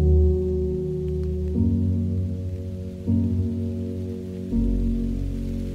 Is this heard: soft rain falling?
yes